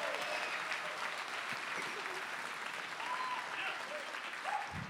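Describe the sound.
Steady, loud audience applause filling all five seconds, a dense crackle of many hands clapping with faint cheers and voices mixed in.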